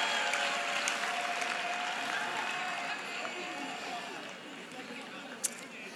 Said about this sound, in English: Oh, clap for Ghanaian jollof.